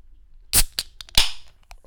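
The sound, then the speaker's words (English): A beer can cracks open: a sharp metallic snap, a smaller click, then a second burst of fizzing hiss that quickly fades, with no talking. “All right, the crack.”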